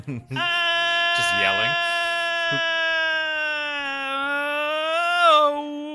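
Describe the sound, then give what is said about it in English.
A person yells one long, loud, sustained note as a vocal warm-up. The pitch holds mostly steady for about five seconds, wavering briefly early on and rising slightly before it cuts off. “This is my vocal warm-up.”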